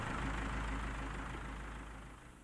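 A bus engine drones steadily from inside the vehicle as the bus runs through the night, a deep muffled rumble with a hiss of road and cabin noise that eases off slightly toward the end. No one speaks.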